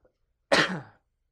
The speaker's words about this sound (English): I'm sorry, I just coughed at you.